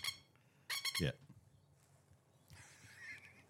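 A short, shrill burst of plover calls: four or five rapid, harsh piercing notes in quick succession, ending in a downward squawk, followed by softer, scattered chattering over faint background noise.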